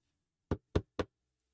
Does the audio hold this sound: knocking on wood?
yes